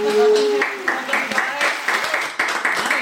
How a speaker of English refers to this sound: Should we give you a round of applause?